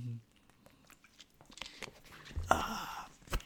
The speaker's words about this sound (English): Going to take a sip here right now.